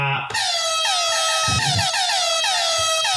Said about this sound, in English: What was that then? The air horn? Air horn. Okay, air horn for me for being right.